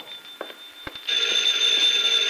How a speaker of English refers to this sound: Get the phone